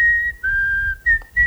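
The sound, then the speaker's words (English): A person whistles an eerie tune: a long, steady note that dips slightly in pitch, followed by two shorter notes, with no talking. “They're getting closer, and they're just whistling.”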